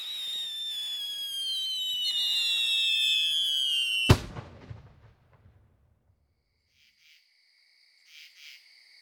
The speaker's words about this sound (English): That night, far below his castle, the people in the town saw a great explosion from the castle's highest tower. It shot up from the parapet and popped like a firework in the night sky.